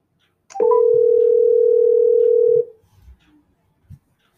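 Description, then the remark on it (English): A single steady ringback tone on an outgoing phone call placed from a phone through a calling program, lasting about two seconds and fairly loud and clear, then a brief quiet stretch with faint handling noise. No one speaks. “So this person doesn't know I'm calling them, and this is happening right now.”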